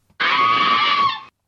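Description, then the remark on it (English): A single loud, shrill scream lasting about a second, sustained and harsh with a steady high pitch before cutting off abruptly, heard alone with no talking. “Okay, that's the scream page.”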